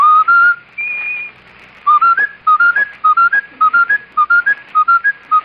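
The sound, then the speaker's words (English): A clear whistle by a whistler plays a short melody, then gets stuck repeating the same brief two-note phrase over and over at a steady rhythm, imitating a skipping broken record. “Sure, now, can you whistle the broken record?”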